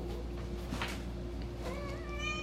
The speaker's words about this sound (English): Get out of the coffee table, please. Please get out of the coffee table. Do me a favor. Get the cat out of the coffee table.